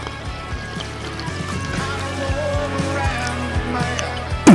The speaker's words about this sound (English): So all right, let's go for another sip, see what happens.